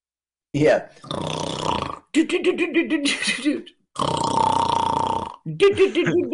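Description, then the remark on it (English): A person loudly imitates snoring with their voice, producing several long, rasping, gurgling bursts in a row, with brief pauses between them. “Oh, … snoring.”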